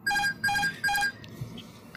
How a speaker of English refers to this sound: I've noticed that if my seat is far forward enough, I can hear some repetitive beeps from the cockpit upon landing, similar sounding to the beeps heard during Captain Nick's introduction.